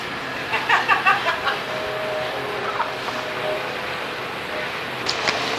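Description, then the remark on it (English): A train goes by with a steady, broad rumbling roar, thin high squealing tones running through it and brief clattering bursts near the start and again at the end. “However, I've got to tell you about something else first, just after I've had a drink and the train goes by.”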